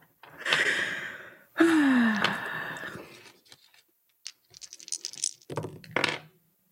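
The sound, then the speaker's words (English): Dice, rolled with disadvantage, rattle and tumble across a tabletop in two clattering bursts, followed by a few lighter knocks and small rolls as they settle. No one speaks. “Okay, and I'm rolling with disadvantage.”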